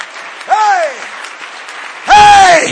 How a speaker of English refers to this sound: Clap your hands and shout unto Him.